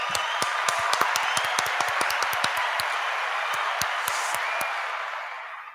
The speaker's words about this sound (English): And again, I think we need a round of applause for Aaron Bulger.